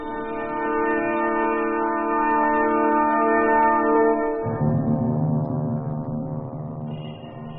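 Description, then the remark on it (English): Big Ben's clock tower chimes ring out in London in long, resonant tones, one deep note sustaining and then giving way to a lower one halfway through, loud and steady with no voices. “We are fortunate to hear Big Ben, comrades. Big Ben's chimes had not been ringing for some time.”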